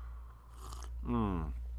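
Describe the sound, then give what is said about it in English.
A quick slurping sip of coffee, followed by a short satisfied voiced "ahh" over a steady low background hum. “Let me go ahead and get this sip of coffee out the way.”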